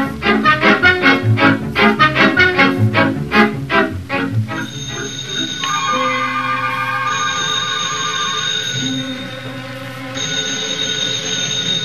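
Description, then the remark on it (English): In a Cavalcade of America radio drama, a loud, rapid, rattling telephone bell rings for about four seconds, then gives way to sustained, swelling musical chords with steady high tones. “Hear that telephone bell?”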